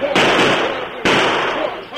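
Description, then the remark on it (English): Two loud gunshots about a second apart, fired after escaping outlaws, each a sharp, harsh crack that rings out with a long, noisy tail before fading. “Stop them shots.”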